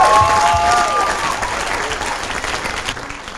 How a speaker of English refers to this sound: Let's give a big clap off unto the Lord for what he has done.